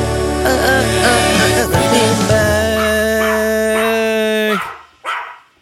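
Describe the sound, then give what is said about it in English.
A dog barks and yelps in short bursts over a loud, bright musical jingle with sustained tones, then the music cuts off and one last bark rings out near the end. “I love that jingle, especially the dog.”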